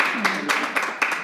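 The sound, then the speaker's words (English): An audience claps to vote in favor of Stacey Abrams, in a dense, steady patter, with a few louder bursts of applause rising above the wash of hands and a faint voice murmuring underneath. “All in favor of Stacey Abrams over this guy, please clap.”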